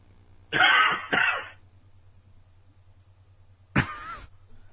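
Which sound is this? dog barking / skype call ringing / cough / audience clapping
cough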